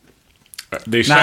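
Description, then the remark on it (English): A couple of soft, crisp crunching clicks as someone munches a Tic Tac mint, quickly followed by a person starting to talk over the tail of it. “You can't sit on the podcast munching a Tic Tac.”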